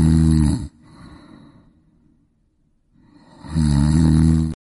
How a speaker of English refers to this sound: Snore, pillow fight. The snore of the week.